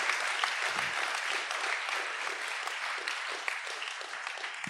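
Sustained applause from an audience, a dense, steady wash of many hands clapping at once, holding at an even level for several seconds without anyone speaking.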